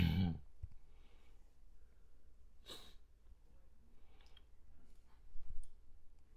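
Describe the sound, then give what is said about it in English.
Sparse mouse or keyboard clicks tap out at irregular intervals as a game master clicks on something, a few sharper ones standing out against a quiet, faint hiss with no one talking. “The DM is clicking on something. I can sense it's clickety-clacking.”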